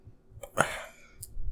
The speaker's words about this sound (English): I just burped into the vibe. Sorry.